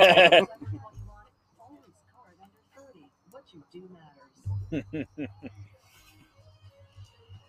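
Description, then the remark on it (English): A person imitates a croaking frog in a low, gravelly voice, with a loud burst at the start, then a run of rhythmic croaks that fade into softer rasping. “He's just such a fucking cheerleader, and it drives me insane. Frog voice like this.”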